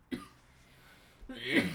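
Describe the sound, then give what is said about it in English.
Two harsh coughs from an asthmatic person: a sharp bark at the start, then after a pause a longer, raspier coughing fit that builds in loudness. No speech is heard. “won't stop coughing.”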